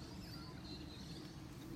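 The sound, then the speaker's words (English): Faint birds chirp and twitter, a soft, steady stream of high calls over low background hum with no one talking. “Oh my God, those birds.”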